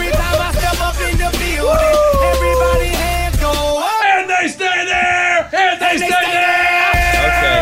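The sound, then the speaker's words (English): Several voices yell and whoop loudly in sustained, overlapping shouts, with a deep booming rumble underneath for the first half before it drops away and the hollering carries on. “A lot of yelling.”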